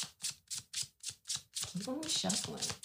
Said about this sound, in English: Shuffling.